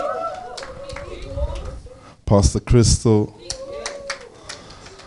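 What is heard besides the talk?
audience round of applause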